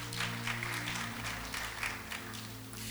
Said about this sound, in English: Clap for Jesus.